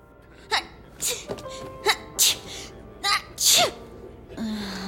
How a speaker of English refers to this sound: But apparently, Faye's not just having a drink, she's having a bit of a cold, and she sneezes three times as we are introduced to Grin.